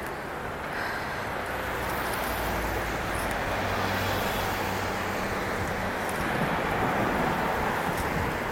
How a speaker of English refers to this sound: apparently the streets are not blocked off yet, because as you can hear, we've got some cars that we're hanging out with.